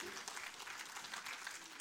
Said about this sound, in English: So let's applaud the Lord.